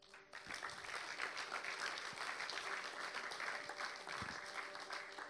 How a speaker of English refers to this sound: Church, can you put your hands together and thank my friends?